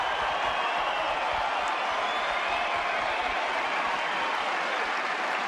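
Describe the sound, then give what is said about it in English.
A large crowd at Rod Laver Arena cheers and claps continuously during a tennis match on center court, urging on Blinkova and Rybakina as Blinkova serves for the match: a dense, steady roar of applause and shouts that holds at an even, loud level throughout without any break. “The Rod Laver Arena crowd urging on these two warriors on center court.”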